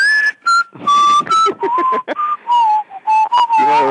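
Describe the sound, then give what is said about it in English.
Someone whistles a bouncy, cheerful melody, the notes gliding and hopping with short gaps between phrases, and a brief spoken word slips in near the start. “So, did that whistle.”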